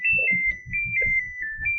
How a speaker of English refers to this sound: the microwave plays a little melody instead of the expected ching. Ching.